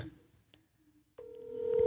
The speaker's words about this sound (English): Let's call. I'm going to call a number to someone I shouted out early. Let's see if he going to be extra petty if he answer this phone.